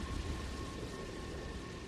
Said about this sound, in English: The storm had taken its time. It had prowled just out of sight, growing and churning and preparing. Even when it began moving, the clouds seemed to take their time rolling across the sea toward land.